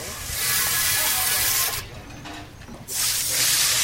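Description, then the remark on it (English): Water sprays hard, a loud broad hiss that drops off briefly near the middle and then surges back at full force, as a crew washes down two massive Brunswick stew pots. “John D. and his crew wash down the pots before heading back to Lawrenceville.”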